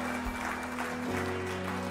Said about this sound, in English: Church, can we give them a round of applause? Come on, people just gave their life to Jesus.